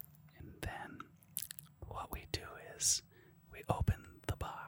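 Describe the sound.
A voice imitates ASMR: breathy whispering mixed with wet mouth clicks, lip smacks and sharp sibilant hisses, coming in irregular bursts at a soft, intimate level.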